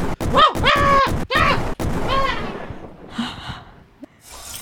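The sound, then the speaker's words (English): Sharp video-game gunshots, fired at a door, crack out four times in the first two seconds, mixed with wailing, excited vocal sounds, then a softer rumbling tail trails off. “decided to shoot his own door”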